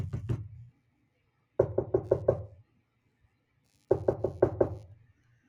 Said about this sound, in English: Well, that was a little creepy with each knock we had there, almost as if it was a new knock of a different personality that was coming through.